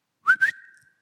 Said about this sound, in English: We see the imagery in Isaiah 7. God merely whistles.